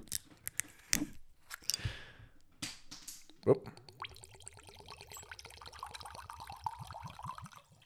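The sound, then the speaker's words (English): Several sharp snapping cracks ring out as two mini bottles are twisted open at the same time, followed by a brief liquid pour as voices start talking over the sound. “So let's crack this open. We do the same time.”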